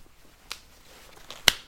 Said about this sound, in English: Okay, so I'm going to flip a coin.